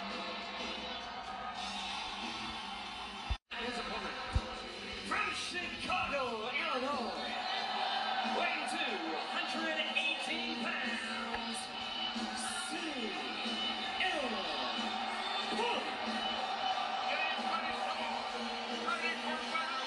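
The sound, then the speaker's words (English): A huge arena crowd in Chicago chants "CM Punk" over and over during Darby's entrance, a dense, steady roar of many voices with pitches rising and falling together, broken by a brief dropout early on. “Through Darby's entrance, the crowd in Chicago kept chanting CM Punk. I left it running then, just to see if you could hear it.”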